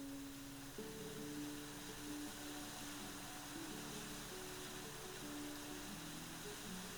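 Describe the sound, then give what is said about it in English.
A waterfall plunges over a cliff in a steady, unbroken roar of rushing water that fills the whole stretch, with soft, sustained low tones humming faintly beneath the spray. “The trail ends at the base of a waterfall plunging over a cliff.”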